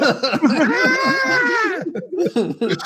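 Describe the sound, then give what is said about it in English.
A child wails in one long, high, sustained cry that rises and then breaks off, with voices chattering underneath and continuing after the cry fades. “Kids crying.”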